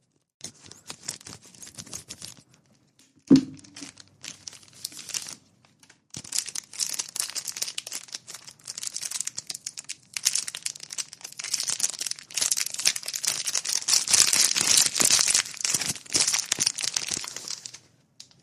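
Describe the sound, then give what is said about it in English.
Crinkling and tearing of packaging as a package is cut open with scissors and unwrapped, with a sharp knock early on, then continuous rustling and crumpling, getting louder toward the end. “About to open this here.”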